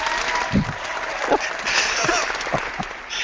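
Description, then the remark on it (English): A burst of canned applause, a sound effect added with a Google effects tool: dense, steady clapping from a sizable crowd, fairly loud and sustained for a few seconds with no voices over it. “That deserved applause.”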